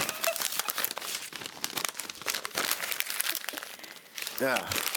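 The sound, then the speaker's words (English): Paper crinkles and crumples continuously, with sharp tearing bursts scattered throughout, and a brief voice breaks in near the end. “Or use a piece of paper. I meant to rip this one.”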